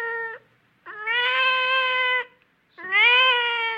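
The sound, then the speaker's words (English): A cat meows three times, loud and drawn-out, the first call clipped short and the next two long, wavering yowls separated by brief pauses, with no talking, in a 1970 conceptual art interview recording in which the artist Marcel Broders interviews his cat about fine art. “No, it's Marcel Broders interviewing his cat about fine art.”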